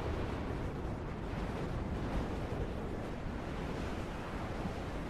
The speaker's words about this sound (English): You're getting battered by waves. Not big waves, not tidal waves, but pretty large waves.